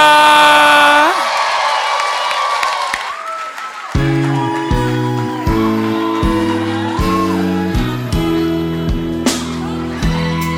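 An audience cheers and whoops with scattered clapping, then steady rhythmic organ-like chords take over while the crowd noise carries on underneath.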